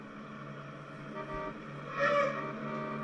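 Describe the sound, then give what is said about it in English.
A car screeches to a halt in the final Edith Keeler scene, its tires letting out a loud, shrill squeal that peaks near the end over a steady engine drone. No voices are heard. “He stops her as the car screeches to a halt.”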